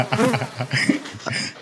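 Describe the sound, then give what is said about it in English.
A swarm of bees buzzing steadily around a flowering male persimmon tree, many overlapping wingbeats forming a dense, continuous hum with individual bees droning louder at moments; no one speaks. “It's absolutely covered in bees. There's your sound. There they are.”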